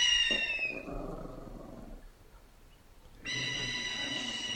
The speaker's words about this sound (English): I'm surprised the dogs aren't going crazy, though. You can hear him growling. He's ready.